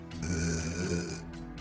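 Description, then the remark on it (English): A woman lets out a low, rough groan that drags on for just over a second, steady and throaty, with no words spoken around it. “She opened her mouth, letting a low groan leave her lips.”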